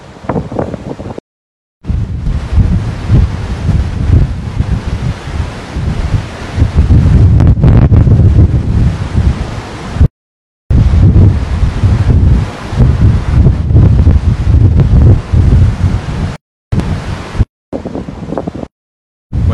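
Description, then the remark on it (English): Loud wind buffets the microphone over a steady roar of ocean surf at the shoreline, broken by several abrupt moments of silence; no one speaks. “Closer to the water for the Ocean Sunrise Catechism.”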